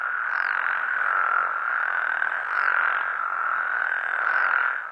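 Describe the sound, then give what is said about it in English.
A dense chorus of thousands of spadefoot toads (actually frogs) gathered in spring at Mono Lake, outside Yosemite National Park, recorded in the early 1990s, croaking together in sync in a steady, pulsing drone, the calls merging into one loud, continuous wall of sound with periodic swells. “It's of thousands of spadefoot toads, which are actually frogs.”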